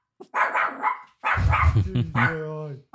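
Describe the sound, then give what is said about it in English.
A dog barks several times in quick bursts, ending in a drawn-out whining yelp. “Yeah, he's a good dog.”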